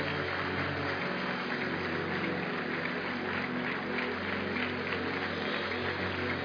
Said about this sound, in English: Keep clapping until they go.